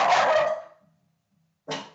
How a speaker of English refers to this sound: There's a dog. Oh, boy.